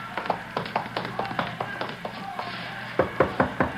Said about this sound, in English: Yeah, around back of the stand here. Knock on the door.